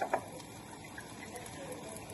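The first cup of milk, of 3 cups needed in total, pours steadily into a bowl, a soft continuous splashing hiss lasting a couple of seconds, preceded by two brief clinks at the start.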